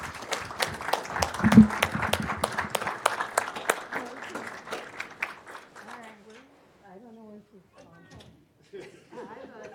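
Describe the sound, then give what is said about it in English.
A group of people at a city council meeting in Illinois claps together after a police sergeant is sworn in, steady and fairly loud for several seconds before thinning out, with murmuring voices underneath; talking takes over as the clapping dies away. “Then we're going to clap and take a group photo.”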